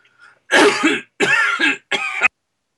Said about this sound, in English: No, I've got a cough. I just keep coughing. It's only one guy.